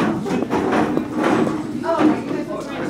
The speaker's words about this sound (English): I know it sounds kind of like a fire drill, but this is a classroom where 16 mostly spunky ninth graders are moving their desks into small circles for the day's lesson.